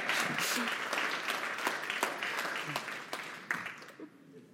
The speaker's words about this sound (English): And so if you guys, yes, give me applause. There we go.